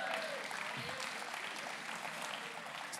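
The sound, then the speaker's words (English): A steady round of applause, dense overlapping clapping that holds at an even level for about three seconds with no voices standing out. “Let's give Marty a round of applause.”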